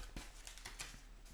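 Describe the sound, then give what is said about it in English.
A paper note, pulled from a suit jacket pocket, being unfolded: a quiet run of short, dry crinkles and crackles spread unevenly over a second or so, with no talking. “So I'd like you to open that and read it out loud for us.”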